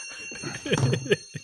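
A house doorbell rings with a cluster of bright, quick chiming tones that sustain briefly, heard at moderate volume.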